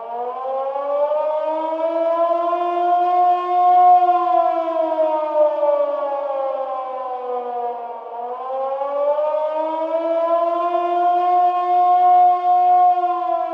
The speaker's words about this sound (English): It was in the early hours of the 25th of February 1942 when air raid sirens started to yell.